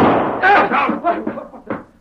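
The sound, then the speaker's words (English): A back door is pushed open with a few knocking thuds and a bang, while voices talk over it throughout. “Open the door.”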